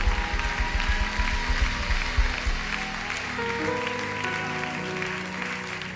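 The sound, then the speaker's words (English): A church audience claps steadily as people come forward to the altar, including from the balcony, a dense wash of many hands with a rhythmic thumping beat early on, while sustained musical tones play underneath throughout. “Keep clapping. This is something to be celebrated.”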